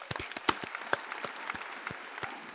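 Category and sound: crowd, clapping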